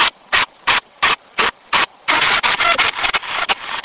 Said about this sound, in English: Can you hear that static? Generally, a voice comes right around that. That's usually what I've noticed. When you start hearing a little bit of static.